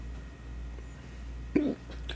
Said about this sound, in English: God damn it. Stupid hiccups.